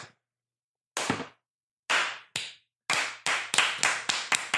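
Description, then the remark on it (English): Hands clap loudly and sharply with no voices: a few slow, spaced claps, then a quicker run of about half a dozen claps in a steady rhythm. “There's your final clap.”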